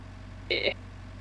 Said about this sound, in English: What? Oh, the car.